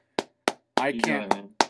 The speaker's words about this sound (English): I can't plug in sound effects on GarageBand. He's applauding himself.